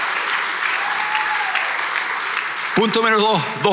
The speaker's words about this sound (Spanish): Créelo, dar un aplauso fuerte al Señor. Come on. Woo.